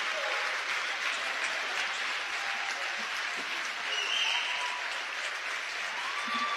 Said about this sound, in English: A standing ovation. The West Iron County team is up and applauding, as well as the Westwood and the fans.